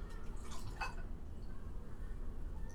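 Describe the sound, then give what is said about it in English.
A brief splash of liquid pours into a glass, a quick gurgle early on over a low, steady background hum, then it settles into quiet room noise. “Can we pour?”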